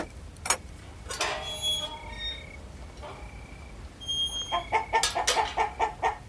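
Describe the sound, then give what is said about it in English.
Chickens cluck and chatter in the garden behind a club, a run of short repeated clucks building into a busier burst of calls toward the end, with faint outdoor background noise and no talking. “Hi, Chicken.”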